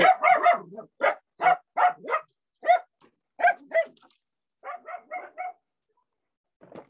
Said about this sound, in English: Sorry, that's, my little dogs get easily upset. Dachshunds, wiener dogs. In any event, that's... I got the little dogs under control.